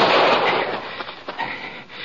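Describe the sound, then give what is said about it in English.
Gunfire rings out in a canyon, fired by a shooter up behind a tree and hitting a rider's leg: a loud burst of rumbling noise followed by a few sharper cracks that echo and fade over about two seconds, with no voices. “the shots weren't coming from inside”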